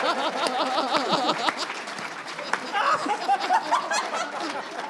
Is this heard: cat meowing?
no